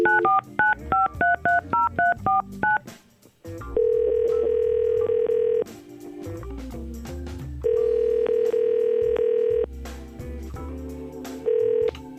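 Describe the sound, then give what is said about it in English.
Y100 radio hosts in San Antonio phone a man live on air: a quick run of about a dozen touch-tone dialing beeps, then a telephone ringback tone sounding in long steady pulses with pauses between. Clear, with no voices. “So we said, okay, we'll call him.”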